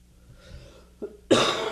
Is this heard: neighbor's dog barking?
no